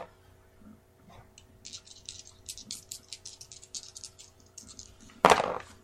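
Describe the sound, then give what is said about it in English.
Dice rolled on a player's turn in a board game rattle with a quick, uneven run of small clicks for a few seconds, then land with one loud sharp clatter, totalling ten. No one speaks. “Here are some dice.”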